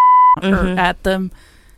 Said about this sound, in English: Cut that. Bleep that. Yeah, bleep that.